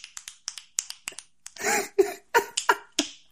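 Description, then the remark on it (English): Finger snapping with both hands: a quick, steady run of about ten crisp, light snaps, followed by several louder, fuller snaps spaced more irregularly. No one speaks. “I'm snapping two fingers at once, like two both hands.”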